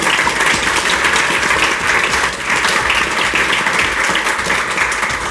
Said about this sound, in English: Give everybody a round of applause for putting on the show.